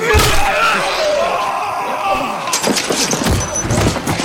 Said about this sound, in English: I lashed out at the closest zombie, knocking it to the ground.